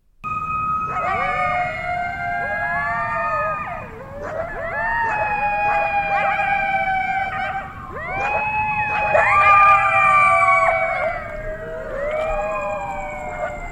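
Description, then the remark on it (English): A pack of coyotes howling and yipping together, many overlapping wavering high-pitched cries rising and falling continuously for the whole stretch, loud with no talking. “So I YouTubed it, and now I'm going to subject all of you to the sound of coyotes howling.”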